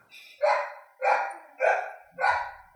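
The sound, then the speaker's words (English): A very anxious puppy barks four times in a steady, evenly spaced rhythm, each yap sharp and fairly loud, with short quiet gaps between and no talking. “A very anxious puppy barking in the background.”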